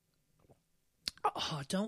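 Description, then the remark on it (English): Wet mouth noises as someone takes a very large sip of wine: a soft, quiet start, then louder slurping and swallowing sounds, ending with an audible exhale. “I'm going to pause and have another very large sip of this wine.”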